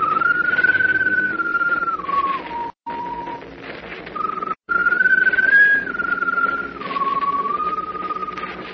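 A long, mournful whistle from a strange glowing bird perched on top of a mast holds a wavering tone that slowly slides down and back up, broken by two short pauses, over a dense, murky background with no talking.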